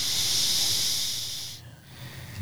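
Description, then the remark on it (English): A steady breathy hiss of someone exhaling vape vapor through the nostrils, lasting about a second and a half before cutting off abruptly into a quiet room tone. “It's coming out the nostrils. Thing. Oh, that was his vape.”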